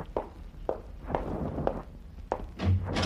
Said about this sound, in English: Open the door for him, Burton. Yeah, I will.